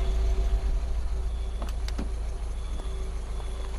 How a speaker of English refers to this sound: After waving off the private car,